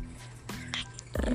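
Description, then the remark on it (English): A person makes a low, rough, rumbling growl, imitating a dog, held steadily through the short moment with a gravelly swell near the end. “Can you not growl at us?”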